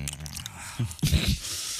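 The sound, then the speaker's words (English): Wet, smacking gum-chewing noises in a studio, a few squishy mouth clicks and slaps in an irregular rhythm, fairly quiet overall with a couple of louder bursts. “Sorry, I couldn't hear you over my gum chewing.”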